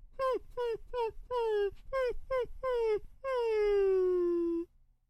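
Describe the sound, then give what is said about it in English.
A dog whimpers in a string of short, high, falling whines, about eight in quick succession, then lets out one long drawn-out whine that slowly sinks in pitch before stopping. “Sad dog, make a boy cry.”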